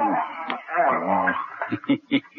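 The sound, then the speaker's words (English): A dog whimpers in a drawn-out, wavering whine, then lets out a few short, sharp yips in quick succession, moderately loud. “Best dog I ever had.”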